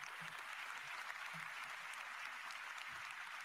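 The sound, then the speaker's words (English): A crowd in Davos, Switzerland gives a big round of applause for everybody who came out that night, a dense, continuous wash of many hands clapping at an even loudness with no voices rising above it. “Big round of applause for everybody who came out here tonight.”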